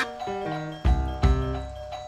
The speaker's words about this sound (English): Thank you, doorbell. Glad to hear you weigh in on this, too.